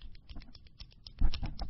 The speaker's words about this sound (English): if you don't stop clicking your pen, I'm going to get homicidal. That frequency makes me crazy.